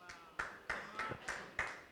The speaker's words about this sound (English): You can clap. If someone claps, we have an agreement here. You all got to clap.